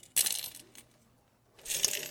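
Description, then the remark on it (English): Coins rattle inside an old pig-shaped piggy bank in two shaken bursts, fairly loud, with a short quiet pause between them and no voices. “Anyway, there was a time when we had change. Do you remember when we had paper money, coins, all those things?”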